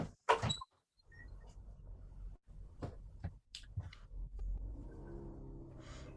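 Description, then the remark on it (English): A door is opened with a sharp latch click and a low sliding rumble, followed by scraping and thuds, then a steady background hum of outside air and room noise. “I just want to open this door to get some air in here.”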